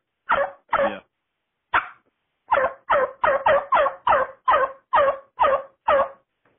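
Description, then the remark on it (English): A turkey call imitates a young male turkey's (jake's) yelp: a series of about thirteen short, raspy, bark-like notes, two early, a pause, then a steady quick run, fairly loud with no talking. “It's almost like a dog barking.”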